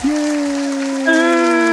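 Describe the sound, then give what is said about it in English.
An applause sound effect: a dense, steady wash of clapping noise layered with sustained pitched tones, and a brighter tone joins about a second in. Loud and unbroken, with no talking. “I still got the applause in there.”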